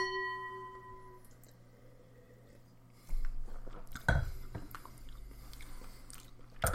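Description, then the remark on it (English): Wet mouth sounds of someone sipping wine from a glass after a toast: a soft slurp and swallow, followed by quieter lip and tongue noises, with no talking. “All right, do you want to go in for a sip?”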